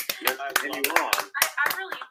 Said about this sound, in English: A round of applause